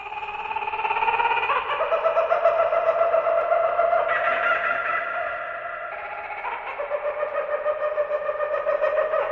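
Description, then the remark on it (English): A loud, raucous laughing call of an Australian bird rolls on for several seconds, a rapid pulsing cackle that steps up and down in pitch, heard alone without any talking. “And in many other films, one can hear this bird, its weird call erupting in the background, as the heroes make their way through the dense jungle. But the bird is Australian.”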